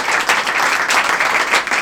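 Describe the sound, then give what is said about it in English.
A crowd applauds steadily, many hands clapping together in a dense, loud wash of sound with no voices standing out, as performer Helen Arney is welcomed to the stage at a Stand Up Tragedy comedy night. “So give a round of applause to Helen Arney.”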